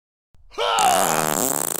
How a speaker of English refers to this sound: Hey, was that a kung fu fart? I've heard about those. Some call them kung farts.